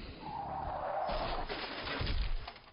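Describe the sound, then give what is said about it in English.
Car tires screech loudly in a long, sustained squeal over engine noise, giving way to a rough, rumbling crunch near the end. No one speaks. “That's a sound effect I hate, but I love at the same time.”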